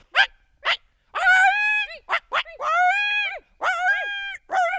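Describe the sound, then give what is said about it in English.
Two people together imitate a coyote: a few sharp yips, then three wavering, high-pitched howls that rise and fall in pitch, broken by quick yelps, fairly loud with no other sounds. “If you're guessing coyote, you're right.”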